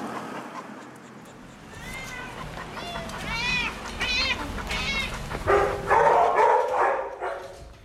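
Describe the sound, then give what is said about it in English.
Several cats meow in a string of rising, drawn-out cries, then dogs bark in louder, rougher bursts at the Citizens for Animal Protection animal shelter in Houston, Texas, busy and echoing, with a steady background hum. “We have cats, dogs, rabbits, guinea pigs.”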